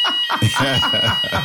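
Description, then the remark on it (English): A fire alarm rings steadily with a continuous high, piercing electronic tone that runs through the whole moment, while people talk loudly over it. “that sounds like a fire alarm to me”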